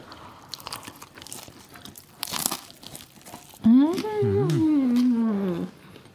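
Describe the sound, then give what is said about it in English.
Crackly crunching of a bite into freshly made capirotada, with irregular chewing crunches for a few seconds, followed by a loud, drawn-out voiced hum with rising and falling pitch. “Okay, ready? Take a crunch.”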